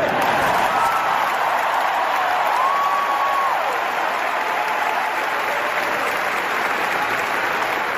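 A large crowd at a game cheers and applauds loudly and steadily for the whole stretch, a dense wash of clapping and roaring voices with a brief whistle-like tone rising above it early on.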